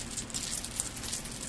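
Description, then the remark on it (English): Coins jingle in a man's pocket, shaken for a game of guessing how much money they add up to, with a continuous metallic rattle, small bright clinks scattered through a steady shaking for about a second and a half, with no voices. “How much money do you think Paul has got in coins in his pocket in the game we're playing”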